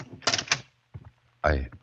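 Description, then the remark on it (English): An unlocked door is opened: a quick rattling clatter of the latch, a short pause, then a brief creaking swing of the hinges. “I thought the door was locked.”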